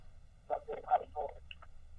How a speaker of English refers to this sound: Hold on. Yeah, that's, that sound ain't coming in too good. Yeah, you breaking up.